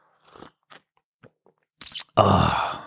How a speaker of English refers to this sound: So, on this beautiful November morning, the last November morning of the year, I'm going to have a little sip of coffee. So here's that.